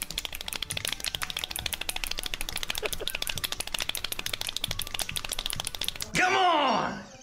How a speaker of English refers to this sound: But yes, here is all three world records. This is the fist bump, the snapping, and the clapping all together. If you did them all at once.